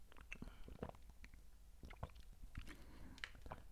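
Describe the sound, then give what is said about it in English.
Wet mouth sounds of someone drinking from a water bottle: soft sips, gulps and small clicks and smacks repeating unevenly, with no talking. “Like when you drink from the water bottle right now. Yes, you can hear it.”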